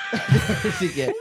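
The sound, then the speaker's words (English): The video game character Mario yells in a quick run of short, bouncy vocal bursts, almost laugh-like. The voice is fairly loud, and the burst lasts only about a second. “Sorry, let Mario yell real fast.”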